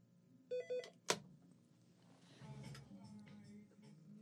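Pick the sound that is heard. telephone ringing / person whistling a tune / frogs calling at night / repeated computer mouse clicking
telephone ringing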